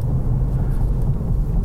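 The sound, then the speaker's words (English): A steady low rumble fills the cabin of a moving car with a 6-speed manual gearbox on Pirelli Sotto Zero tires, driving on clear roads in freezing weather: a continuous droning hum of tires on pavement with faint higher hiss, no talking, constant and moderately loud throughout. “You do hear a little road noise”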